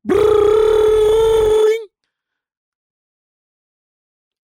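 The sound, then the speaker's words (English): A voice imitates a school bell with one loud, steady, buzzy tone held for almost two seconds, bending slightly at the end before cutting off into silence. “I wanted to talk, but then I wanted to mimic the school bell and.”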